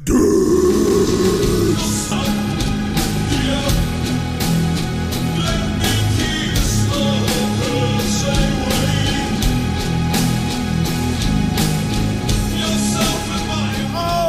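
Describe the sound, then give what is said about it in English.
A long, loud, guttural burp rumbles, drawn out for many seconds with a rough, raspy texture and no talking. “That was the fucking ripping burp you got there, friend.”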